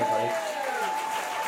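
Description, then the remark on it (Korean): A crowd at a church worship service claps steadily and densely for the whole moment, a continuous wash of hand claps with a faint sustained tone humming underneath. “이렇게 또 박수만 치고 또 돌아갈 땐 다른 얼굴 하고 가면 안 돼.”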